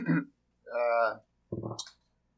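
Three loud coughs in quick succession, each a short harsh burst separated by brief pauses, the middle one more drawn-out and throaty.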